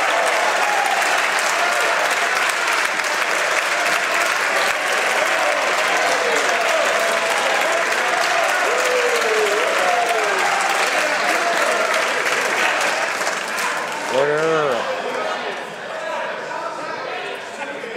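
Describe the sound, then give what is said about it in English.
Sustained applause from members of parliament applauding Prime Minister Justin Trudeau before he finishes his response, a dense steady clatter of clapping lasting the whole stretch, with a few voices calling out underneath and a brief shout near the end. “I know members are anxious to applaud the Prime Minister, but they should wait till he finishes his response.”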